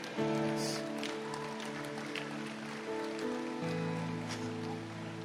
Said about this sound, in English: You see, God is blessing the message. He's blessing them with rain.